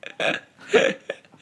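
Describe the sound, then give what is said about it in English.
A few short, buzzy bodily noises in quick succession, a fart with a louder squeaky middle burst, close to the microphone with no talking over it. “No, I just keep farting. I can hear it in the mic.”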